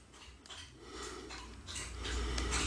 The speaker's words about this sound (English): The dog is drinking water and it's very loud. I don't know if the mic's picking it up or not.